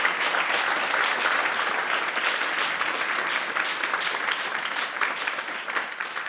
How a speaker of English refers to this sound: Thank you for the delayed ovation for my talk.